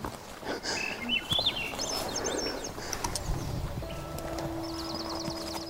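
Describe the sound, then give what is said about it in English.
Birds sing in the wooded outskirts of a Yukon subdivision, in repeated warbling, high-pitched trills over a steady low outdoor rumble, with a rapid chirping burst near the end and a faint humming tone underneath. “Having the birds sing.”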